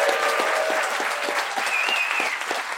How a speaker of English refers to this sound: Massive round of applause